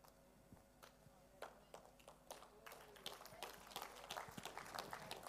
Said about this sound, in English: It's another one of those, I'm not sure what you're clapping about, claps, amen.